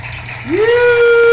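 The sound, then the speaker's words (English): A slide whistle, accidentally hit, glides quickly upward, then holds a steady, bright pitch for the rest of the moment over a soft background hiss. “Was it a slide whistle? I accidentally hit that, yeah.”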